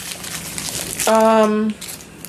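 Rustly, crackling crunching fills the first second, followed by a brief, steady mid-pitched hum that holds for about half a second before the crunching texture returns faintly.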